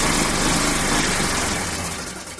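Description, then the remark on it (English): A small car engine starts and runs with a rough, sputtering rumble, loud, then gradually weakens and tapers off toward the end as if dying out. No one speaks. “But also, you know, adding the sound every time the car starts up, you throw in a...”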